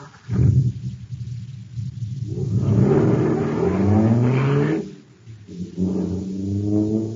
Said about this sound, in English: Wow, this jet car is supercharged now. Sure thing, there's super fuel in it.